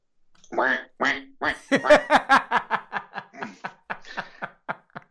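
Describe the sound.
A duck quacks in a rapid run of about fifteen nasal calls, loudest near the start and gradually tapering off, with no talking over it.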